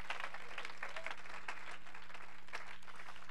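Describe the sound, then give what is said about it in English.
An audience claps its hands in praise in Jesus' name, a dense, steady stream of applause that holds at an even level throughout, with no voices rising above it and a faint low electrical hum underneath. “Let's clap our hands and give him praise in Jesus' name.”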